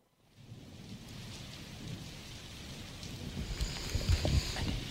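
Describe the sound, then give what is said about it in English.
A rain sound effect: steady rain falls with a dense, continuous patter, joined by low rumbling that swells toward the end like thunder. No voices, just the storm building gently in loudness. “Oh, soothing rain back? Sound effect.”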